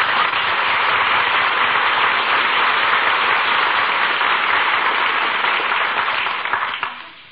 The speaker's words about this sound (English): Acknowledges the applause, takes a bow.